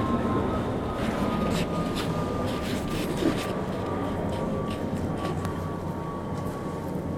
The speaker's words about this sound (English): Okay, close your eyes. Listen to the plane.